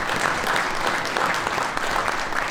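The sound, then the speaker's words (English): An audience applauds a panel in a steady, dense wash of clapping that holds at an even loudness throughout, with no voices rising above it. “But if you'd please be kind enough to give the panel a round of applause.”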